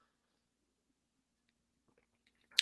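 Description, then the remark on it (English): Near silence with a few faint mouth clicks and small wet sounds, then a short slurping sip of Cape May Brewing's amber Oktoberfest beer from New Jersey, 5.8% alcohol, right at the end. “This is their Oktoberfest. I mean, look at that amber body. Looks delicious. Let's take a sip here.”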